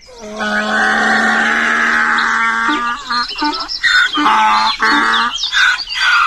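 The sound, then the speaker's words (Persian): A donkey brays loudly while kicking up its heels, starting with a long drawn-out honk and breaking into a series of rhythmic, rasping hee-haw bursts, with no talking over it. “بعد شروع کرد به جفتک زدن و عرعر کردن.”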